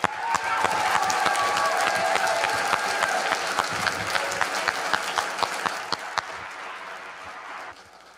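A church audience breaks into sustained applause to encourage a young man as he comes up to speak, a dense, steady clatter of many hands that holds strong for several seconds before thinning out and fading near the end.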